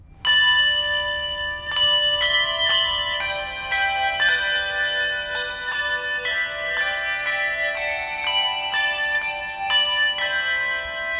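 A church handbell choir plays a slow melody, bright bell tones struck one after another about every second, each ringing on and overlapping the next, clear with no voices.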